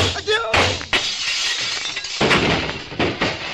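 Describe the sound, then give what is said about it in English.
A plate glass window is blown to bits by a gunshot, a loud crash with sharp bright bursts and tinkling shards scattering over a few seconds, no voices. “The plate glass window blown to bits.”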